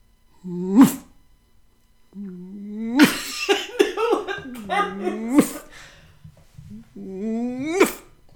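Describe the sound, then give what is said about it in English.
A voice imitates a lion's growl in several rough, throaty bursts: a short one, then a longer rumbling run of growls, and a final gruff roar, loud with brief pauses between. “But what he did do is, at one point in the song, demonstrate how he would be brave and not cowardly anymore, and how he would fight off the enemies of the kingdom with a ruff and a gruff and a royal growl.”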